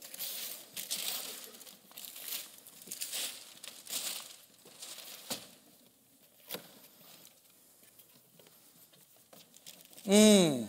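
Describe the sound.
Gift wrapping paper crinkles and tears in several rustling bursts over a few seconds as a gift is opened, followed by scattered small clicks and a quieter stretch, then a voice briefly speaks at the end.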